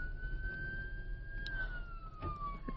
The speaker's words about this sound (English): Oh, we have an ambulance coming by. I'm going to pull over here. Oh no. I hope they're okay.